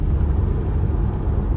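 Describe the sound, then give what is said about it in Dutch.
Steady, dense road rumble of a car cruising on a highway at about 94 km per hour, a continuous low roar inside the car with no pauses or distinct events, moderately loud. “Duik ik weer in de 94 km per uur.”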